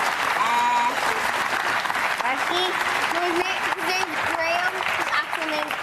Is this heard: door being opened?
no